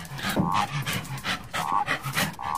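Dogs pant in quick, rhythmic breathy bursts, mixed with short snuffling sniffs along the ground. The breathing stays steady and fairly loud throughout, with no one talking.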